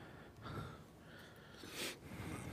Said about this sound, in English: Okay, so could you stop breathing in your fucking microphone?